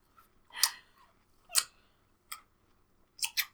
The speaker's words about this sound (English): Can you hear me eating my watermelon?